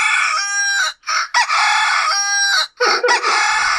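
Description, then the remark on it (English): A rooster crows loudly in long, harmonic-rich calls, two extended crows broken by short gaps and followed by a couple of choppier bursts, with no talking over them. “I just worry that I would have killed my rooster.”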